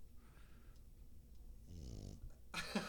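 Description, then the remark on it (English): A small dog snores loudly, a rumbling inhale followed by a sharp snorting exhale, against a low background hum with no talking. “This is what I live with every night of my life. He's snoring so hard.”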